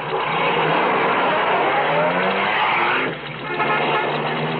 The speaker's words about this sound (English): there's a car coming. It's pulling off the highway.